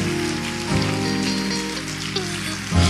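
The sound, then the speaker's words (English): A church audience at St. Paul applauds and cheers to give God praise, in a steady, dense roar of clapping that fills the whole stretch, with sustained musical tones or voices ringing through underneath. “Y'all go get the biggest cheer.”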